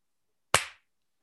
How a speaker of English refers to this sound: I just always use the clap to as the spike in my editing, so I know when.